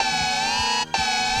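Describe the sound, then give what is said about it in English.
An air raid siren blares in a loud, steady, buzzing tone with no one talking, cutting out for a split second near the end before resuming. “it's going to be, where's my air raid siren?”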